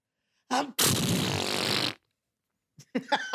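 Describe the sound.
A person imitates how a man sneezes: a short voiced wind-up, then a loud, harsh, spluttering blast lasting over a second. A voice starts talking right after.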